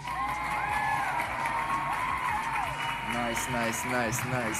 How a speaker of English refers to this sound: Let me get a clap.